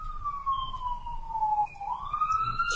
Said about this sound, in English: Oh, yeah. Another ambulance is coming by. Okay, I think it's gone now.